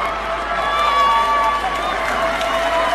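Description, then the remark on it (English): Chadian victims of Hissein Habre cheer loudly and continuously in the courtroom after the court sentences him to life in prison, a dense wash of overlapping shouts and high-pitched ululating cries that holds steady without pause. “The cheering you hear is Chadian victims of Hissein Habre in the courtroom.”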